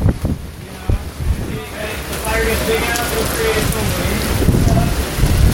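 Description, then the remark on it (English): Heavy rain pours steadily while strong wind gusts buffet the microphone on a main street in Lakeland, producing loud, continuous roaring and rumbling bursts throughout, with a faint voice briefly audible under the storm. “Nothing's going on right now other than just heavy winds and rain.”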